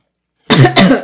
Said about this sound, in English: oh, jeez. Just coughed on a piece of bagel. Choked on a piece of bagel.